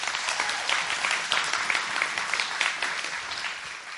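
An audience claps steadily for four seconds, a dense, even wash of many hands with crisp bright slaps, holding at a fairly loud level with no voices on top.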